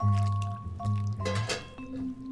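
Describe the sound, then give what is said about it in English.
Liquid is poured into a baking dish, a steady gurgling stream with a brief splashy burst partway through and a slight rise in pitch as it fills. No one speaks. “We pour the liquid, and then it's ready to be put in the oven for 40 minutes, I think at 350.”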